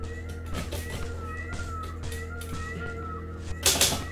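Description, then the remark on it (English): A peacock calls repeatedly with short, tonal, slightly wavering notes over a steady low hum, ending with a brief loud rustling burst. No one speaks. “Please contact me so we can form a strategy to eliminate this bird.”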